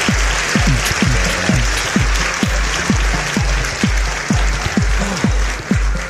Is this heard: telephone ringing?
no